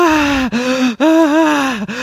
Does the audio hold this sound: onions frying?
no